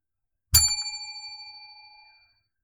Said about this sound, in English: And now we're going to grab our bell. We're going to take a quick break here, guys.